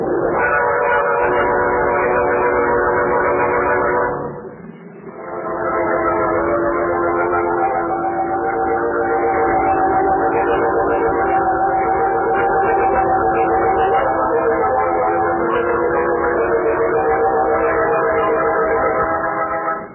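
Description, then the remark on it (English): A train rumbles past at a crossing, its whistle sounding in long, steady harmonic blasts over the constant roar of the wheels, loud, with a brief dip before the whistle resumes. “A man in the road, waving a lantern. Of course, Margo. It's a train crossing.”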